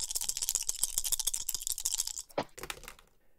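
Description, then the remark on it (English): A quick, dense clatter of four dice rattling and tumbling across a surface, ending in a sharper knock before settling into quiet. Moderately loud, no voices. “Roll 4 dice.”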